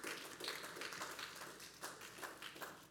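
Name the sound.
a few people clapping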